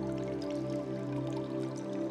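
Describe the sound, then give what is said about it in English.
Soft, steady trickling and dripping of fresh water in a cave, fairly quiet, layered over a continuous low humming drone with no talking. “The waves, the distant birds, the trickling fresh water, the breeze.”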